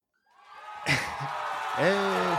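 Canned studio-audience applause swells in suddenly and holds steady as a dense wash of clapping, with whoops and cheers rising over it near the end.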